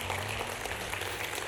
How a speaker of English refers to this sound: Come on, put your hands together and give a loud clap off. Offering a praise to our Lord God.